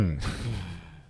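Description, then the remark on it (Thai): A brief, low throaty hum or growl from a voice, lasting about a second and trailing off into a breathy exhale. “สรุปคุณนี่คือเสียงกรนหรือเสียงคำราม”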